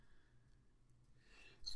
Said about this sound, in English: Excuse me. Big sneeze.